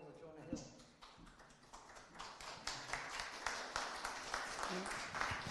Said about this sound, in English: Again, clapping is really not appropriate. Everybody gets the opportunity to speak, and we really shouldn't have any moaning, booing, laughing. It's just not the way the procedure is conducted.